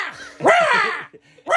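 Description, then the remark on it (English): Harsh, raspy crow caws ring out loud, a short call followed by a longer drawn-out one and the start of another, with brief gaps between them. “I guess they're supposed to be eagles, but they sound like crows.”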